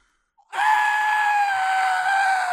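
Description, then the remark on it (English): A single loud, acted scream of pain bursts out of silence and holds for about two seconds, shrill and strained, its pitch sagging slightly as it goes, reenacting a scream from putting contact lenses back in. “The next morning, I put them back in, and I've never yelled so loud in my life. It hurt like a motherfucker.”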